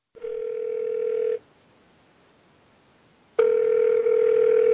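A telephone ringback tone rings twice as a phone call is placed, each a steady electronic buzz lasting over a second, separated by a two-second gap of near silence. The tone is clear and fairly loud, with no voices.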